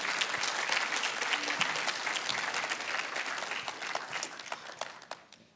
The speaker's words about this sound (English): I got a clap and I didn't do anything today.